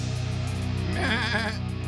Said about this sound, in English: we got a box of goats.